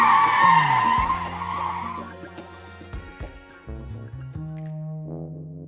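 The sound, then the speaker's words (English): A loud screech of skidding tires bursts out at once, then gives way to a revving engine as a truck speeds off, its tone shifting in steps for several seconds. “Detective Moose jumped into the back of the truck as it sped away from the burglar bears.”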